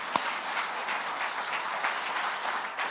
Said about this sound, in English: So as a way of saying thank you to volunteers and praising God, can we just give a rounding round of applause for everything?